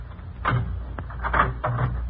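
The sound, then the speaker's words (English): A door being unlocked and opened: a few sharp clicks and clunks spread over two seconds, like a key working a lock and the latch giving, over a low steady hum. “Now, go on, open up. You got the keys?”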